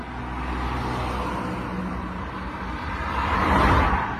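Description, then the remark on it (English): Steady street traffic rumbles along, with a car swelling louder as it passes by near the end, over a constant low roar of engines and road noise. “It's cars passing by.”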